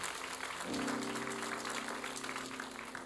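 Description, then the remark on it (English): A church audience claps steadily for one of its members who got a job, a dense, continuous wash of applause, with a sustained low musical tone, like a held organ note, entering under it partway through. “I'm glad that you clap for him, but please don't forget that one of the reasons he got the job is because of you.”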